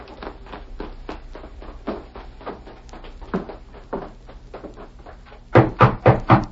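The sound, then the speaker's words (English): Knocking on a wooden door: a run of soft, steady taps, then a burst of four loud raps near the end, with no voices. “Who's there? Open the door, Lee. I want to talk to you.”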